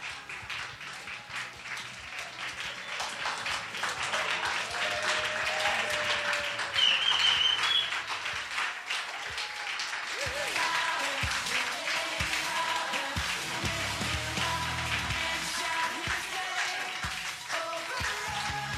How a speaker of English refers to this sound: Let's give them a cheer. Thank you, everyone. We appreciate you.